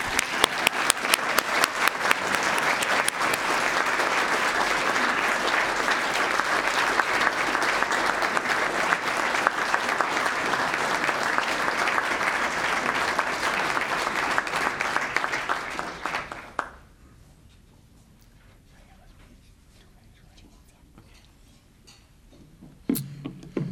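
A crowd applauds steadily with dense, crackling claps for about sixteen seconds, then the clapping stops abruptly, leaving near silence before a brief sound at the end.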